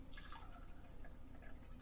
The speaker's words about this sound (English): So, I shall pour my whiskey now. I'm actually going to get out my flashlight so I can see how deep I'm pouring the whiskey this time.